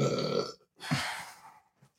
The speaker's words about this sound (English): So it's burps. It's not burps. Unless you blow it in my face, don't do that.